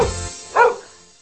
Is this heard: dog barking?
yes